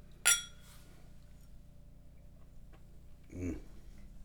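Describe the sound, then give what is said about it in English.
Two glasses clink once in a toast, a bright, ringing chime. A soft, duller knock follows a few seconds later against a quiet room hum. “Let's do a little cheers here, buddy.”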